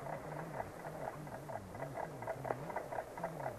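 A clock in a house ticks loudly in a steady, quick rhythm of sharp clicks, with a low wavering hum beneath it and no voices.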